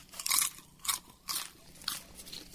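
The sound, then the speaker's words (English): Crunching popcorn: four bursts of crisp, bright crackly chewing at a steady, unhurried rhythm, each with a sharp onset and brief fade, with no voices present. “Good popcorn.”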